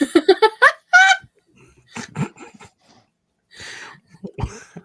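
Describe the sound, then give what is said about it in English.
Close, loud fits of coughing and choking: a rapid run of strained voiced bursts, then spluttering coughs and a raspy, gasping breath after a short pause. “No, I'm choking. I'm coughing.”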